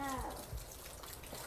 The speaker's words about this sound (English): So, ignore the fact that you can literally hear the snow melting and dripping, and you can literally see the snow melting on our porch.